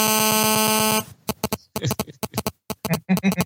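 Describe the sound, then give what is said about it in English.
A phone goes off with a loud, steady buzzing electronic tone for about a second, then breaks into a quick, irregular run of sharp pulsing bursts. “Turn my phone off.”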